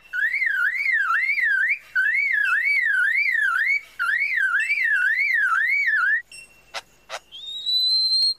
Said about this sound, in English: And that's a car alarm.